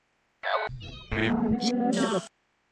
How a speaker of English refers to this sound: Yeah, I think they're talking to Harley because I've been trying to get her to leave. She's very vocal right now. Are you wanting the cat to leave?